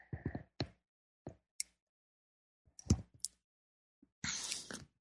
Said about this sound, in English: So check this out. I can take a sip of my tea here.